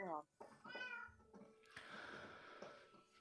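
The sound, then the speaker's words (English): Several cat meows in quick succession, fairly loud, with rising and falling harmonic wails, followed by a burst of noisy crowd-like chatter. “All right, here come the cats.”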